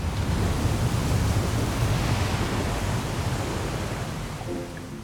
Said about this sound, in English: heaps of water gush out from the interior of the building and flood down the grand staircase below her.